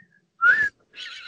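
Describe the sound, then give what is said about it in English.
A person whistles a short rising wolf-whistle-like note, clear, followed by a breathy hiss or blown sound, imitating the whistle a whole stadium crowd gave a football player in unison every time he got on the ball. “And every time he got on the ball, he used to get the whistle.”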